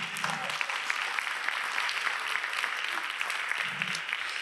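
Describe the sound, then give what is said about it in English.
Steady, dense applause from a crowd, a continuous wash of many hands clapping at an even level, with a faint low voice murmuring briefly near the start and end. “Yeah, you can clap.”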